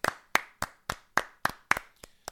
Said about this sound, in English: Round of applause.